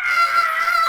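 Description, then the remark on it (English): A person does a vocal impression of a tentacled sea monster screaming: one sustained, high, strained screech held steadily for about a second, loud, with no other talk. “a really funny Netflix subtitle there, which said, in square brackets, sea creatures screaming. Okay. Just a tentacled beast going.”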